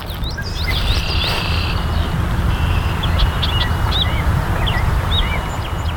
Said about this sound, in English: And any birds who are present are easy to spot, as was the case of one red-winged blackbird.